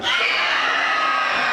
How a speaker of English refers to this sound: Can you, arms in the air, it helps you scream louder. And when I say three, scream as loud as you can. One, two, three.